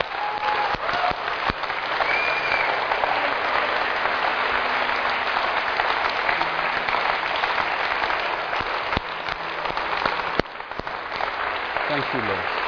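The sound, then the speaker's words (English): A church audience applauds steadily for about twelve seconds for those who raised their hands, a dense, even wash of many hands clapping with a few scattered sharper claps standing out, and no pause in the sound. “And I want the church to give you a round of applause first.”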